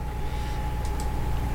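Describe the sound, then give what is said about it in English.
Two quick, light mouse clicks on a computer in close succession, faint against a steady electronic hum and a low background drone, with no one speaking. “He's clicking. He's clicking.”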